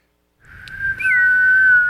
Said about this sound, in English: Dude, it's got the whistle tip on it. I want to throw it a big game from over here. Remember those Nerf Vortex Howler footballs that whistle when you throw them?